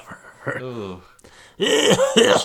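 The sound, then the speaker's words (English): A voice imitates the raspy cough of a smoking dental hygienist coughing while cleaning teeth: a brief groaning rasp, a short pause, then a louder, longer burst of harsh, phlegmy hacking and throat clearing. “She's coughing right in your face as you're cleaning. And she hacks one up.”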